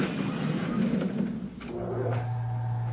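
A voice-activated elevator in Gurney's department store: the door rumbles and slides closed with a soft thud, then a steady low mechanical hum starts up and continues as the car heads for the 12th floor.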